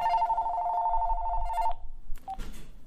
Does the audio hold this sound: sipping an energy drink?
no